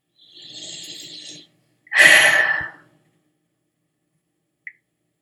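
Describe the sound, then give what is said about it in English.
A loud, noisy breath: a drawn-in inhale followed by a strong, breathy exhale, then a faint click before silence. “Big, noisy breath.”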